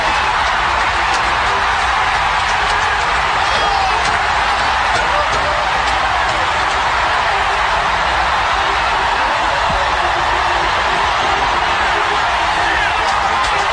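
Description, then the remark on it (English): A large stadium crowd roars and cheers after a home run, a high fly ball into right field on a 3-2 count, a dense, steady wash of voices and noise that holds at a high level for the whole stretch without letting up. “Originally, there's 20 seconds of crowd reaction here.”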